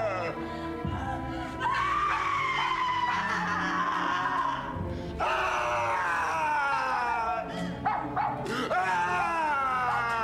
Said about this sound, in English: Dad, was that a movie scream or was that an internet sound? I'm going to say movie.